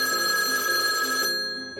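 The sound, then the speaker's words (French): A telephone bell rings loudly, a bright metallic trill with steady high tones that cuts off after about a second and a quarter, leaving a brief fading ring. “L'inspectrice Lafouine tint par rapport sur sa machine à écrire quand soudain, la sonnerie du téléphone retentit.”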